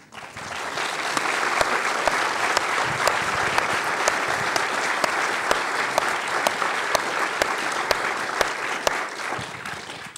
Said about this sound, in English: And I was happy with all the time we spent together, and I'm especially happy that he's here tonight to hear finally applause for his work.